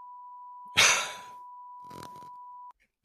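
A steady, high-pitched censor bleep holds for nearly three seconds, with a loud breathy exhale and a brief rustle layered over it, then it cuts off abruptly.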